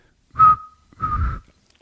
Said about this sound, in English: I'm going to want you to rank the three of them because I want to know what my best whistle is.